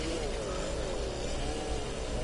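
A car engine revs loudly and steadily, its deep roar holding for about two seconds while the pitch wavers slightly up and down. No one speaks over it.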